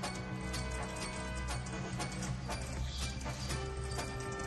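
Horse hooves clip-clop in a steady, fairly quick rhythm, moderately loud, layered over a sustained droning musical background with no one talking.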